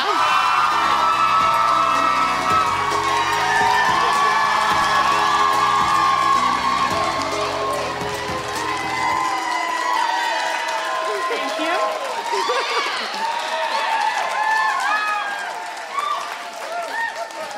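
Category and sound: crowd, audience cheering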